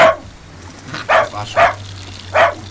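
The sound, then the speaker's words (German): A dog barks in short, excited bursts in greeting, four yips spaced irregularly with eager whimpering between them, over a low steady hum. “Ja, du bist ein braver Hund.”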